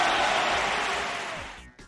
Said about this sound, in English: Now, you get a round of applause.